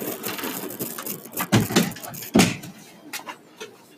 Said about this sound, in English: ASMR, door click.